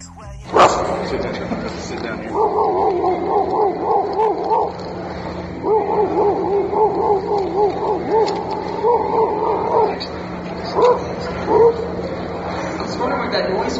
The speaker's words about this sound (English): It's a faraway dog.